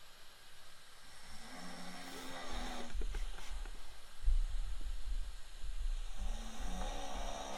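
A person snores in their sleep, a low, rough rumbling that rises and fades in drawn-out breaths, over a steady background hum, with no talking. Recorded yesterday.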